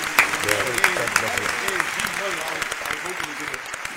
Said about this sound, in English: Shout to Buffalo one time, man. Round of applause to Buffalo one time.